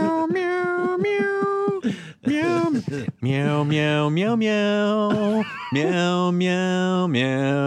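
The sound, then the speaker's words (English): A voice imitates a cat, drawing out a string of loud, sing-song meows with sliding pitch, in several long phrases separated by brief pauses. “Meow, meow, meow.”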